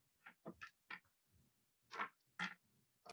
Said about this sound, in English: Dump all my dice out real quick because I keep on losing the dice that I need. All right. D12s.